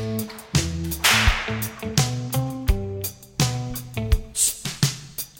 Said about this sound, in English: Also has a whipcrack in it from Harrison Ford.